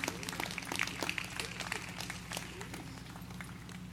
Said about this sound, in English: Now, in my church, they say if you're going to clap, clap right.